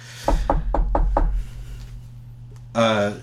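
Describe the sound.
Five quick, evenly spaced knocks on a door, fairly loud, followed after a short pause by a brief burst of someone's voice.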